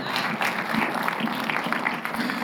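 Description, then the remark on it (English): An audience in Scottsdale breaks into a steady patter of light golf claps, many soft claps overlapping into a continuous crackle that holds at an even level throughout. “So we do a little golf claps once in a while here in Scottsdale.”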